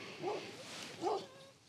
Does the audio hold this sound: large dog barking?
yes